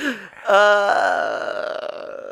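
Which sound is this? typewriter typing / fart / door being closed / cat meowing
fart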